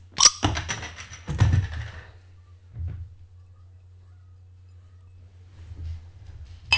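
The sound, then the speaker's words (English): A bottle of Danish Black Cat beer, 10% alcohol by volume and made with lager malts, being opened: a sharp metallic pop of the cap, a second clink, then a brief airy fizz that fades, followed by quiet handling sounds. “Let me crack this boy, this bad black cat open.”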